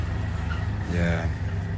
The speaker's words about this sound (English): They really opened up the road today, that's for sure. Car's been blasting off. Oh, is that what it is? I guess so. It's been locked, no, closed up.